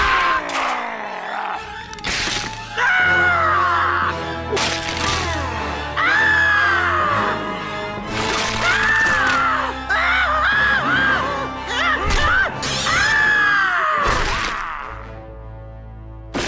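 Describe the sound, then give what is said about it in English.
A cartoon character being tortured by a mummy lets out a string of loud, strained screams of pain, one after another, broken up by sharp cracking impacts of his bones cracking, with music underneath. “Cracking all of his bones. We see the screams. It's excruciating.”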